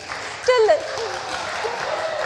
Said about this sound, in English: Talk amongst yourselves. You could like cheer and encourage.